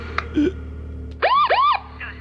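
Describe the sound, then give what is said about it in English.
Two quick, loud police car siren whoops, each rising and falling in pitch, preceded by a few faint clicks and bits of background noise. “Police car.”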